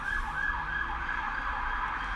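An emergency vehicle siren wails steadily near London, its rising and falling tone continuous over a low rumble of traffic, with no one speaking.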